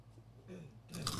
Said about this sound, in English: Can I get your honest reaction? Are you able to hear this bite if I bite into it? Yeah, probably.